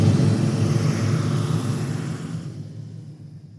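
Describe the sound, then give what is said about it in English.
A loud, rumbling roar of a motorcycle gang's engines approaching Florida's state border with Georgia, with a steady low throb, gradually fading and losing its brightness toward the end. No one speaks. “They hear the sounds coming. Motorcycles.”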